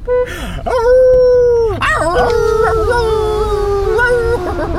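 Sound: dog howling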